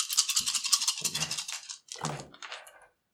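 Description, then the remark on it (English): Dice rattle briskly for over a second, as if shaken in a cupped hand, then clatter in two quick bursts as they tumble across a table, with no voices. “And you've got your extra dice.”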